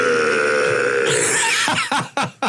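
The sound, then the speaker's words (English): An unidentified person lets out a long, loud belch during a talk show, a low, rumbling buzz stretching for over a second, then breaking into a few short, choppy gulping bursts before trailing off. “Somebody just belt. I don't know what that was.”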